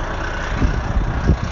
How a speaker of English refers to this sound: You can hear the bus.